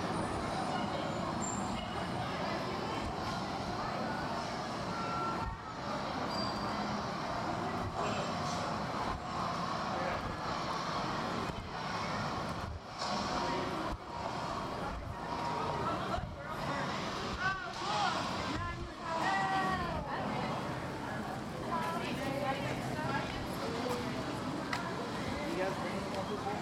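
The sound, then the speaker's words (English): Steady, dense rumble of road traffic with cars and trucks passing continuously, heard from a public library's window, loud, with indistinct voices murmuring through the noise. “And coming from the public library's window, there's also sounds of traffic and trucks and cars.”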